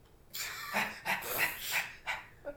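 A dog barks several times in quick succession, sharp and fairly loud, with short yappy barks in an uneven rhythm and no one talking.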